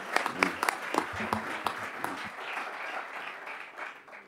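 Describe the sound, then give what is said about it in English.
An audience claps, a dense wash of many hands with sharper individual claps standing out early, then thinning into a softer, steady patter that fades toward the end. No one speaks. “I'm going to clap.”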